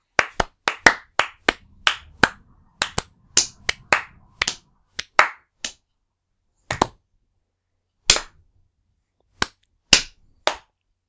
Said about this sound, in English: Let's give the news a round of applause, shall we?